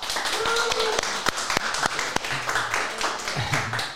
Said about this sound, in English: So let's just give all the fathers, stepfathers, and all the and all that have taken the role of a father for the fatherless a big round of applause.